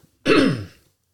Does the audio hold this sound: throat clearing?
yes